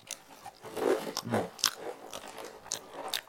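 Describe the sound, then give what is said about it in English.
Crunching of a crispy rice-and-lentil snack being chewed right next to the microphone, with irregular bursts of crackly bites and grinding, loud, no talking. “Yeah, I'm eating right next to the microphone.”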